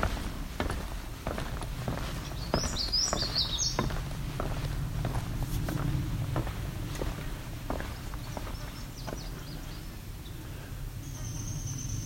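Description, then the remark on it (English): A downy woodpecker gives a brief, high descending whinny of rapid sharp notes, heard once over steady crunching footsteps, with a faint high note later. “It's a downy woodpecker.”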